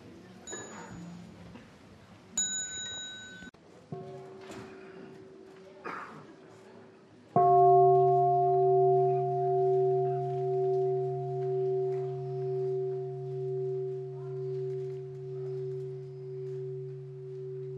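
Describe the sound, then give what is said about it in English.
A small bell is struck once and rings out loud and clear, its sustained tone pulsing gently as it slowly fades, after a few seconds of quiet background noise and faint shuffling. “The children can go out after the small bell.”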